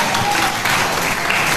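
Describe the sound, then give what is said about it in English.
A Christian audience claps steadily during a sermon, a dense, even wash of many hands with no gaps, fairly loud throughout, with faint voices blended underneath. “Oh, the Christians are clapping.”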